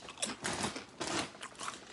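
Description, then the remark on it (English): Someone crunching sweet potato chips, with several crisp, crackly bursts of chewing in an uneven rhythm, fairly quiet and with no talking. “But there's a nice, really like pleasant crunch and a hit of salt.”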